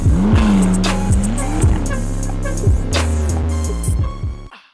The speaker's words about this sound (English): After hitting a pothole and damaging his car at the song's end,